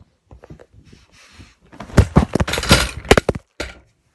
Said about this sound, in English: The chair was flying. I was flying. And then I just hit the ground at maximum speed and I was in pain. But yeah, let's quickly play the clip of me falling off the chair. Or flying off the bed.